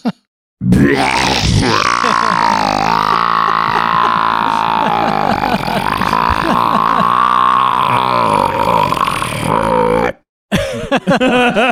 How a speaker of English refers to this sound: $1,000 burp right there. That's $1,000 burp.